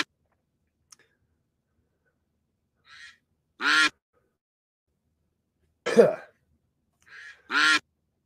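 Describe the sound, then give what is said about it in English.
A duck quacks loudly three times at irregular intervals during a duck race, with softer short calls just before two of them and quiet stretches in between. No one speaks. “He eats loads, but he's got loads of energy for the racing, so he is on it tonight.”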